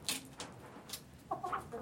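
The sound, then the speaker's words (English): Hens cluck in short, overlapping bursts, with a softer, warbling croon rising toward the end, all against a faint rustling background and no talking. “You know, just the general clucking and sort of crooning and everything is...”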